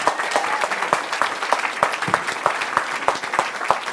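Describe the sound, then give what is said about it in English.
An audience claps steadily for the mini dragons: dense overlapping hand claps with sharp individual slaps standing out, sustained throughout without any talking. “Should we give our mini dragons a round of applause?”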